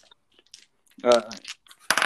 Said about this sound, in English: Holy, how many dice do you have? I was just rolling for the sound.